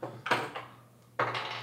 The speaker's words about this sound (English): I get to roll a dice too. Hooray. Awesome. So we're going to roll this dice